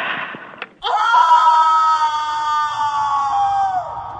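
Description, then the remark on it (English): After a brief rustle, a person lets out a long, loud scream, held steady for about three seconds, wavering slightly before sliding down in pitch at the end, performed as a re-enactment. “I don't know if I can do that scream.”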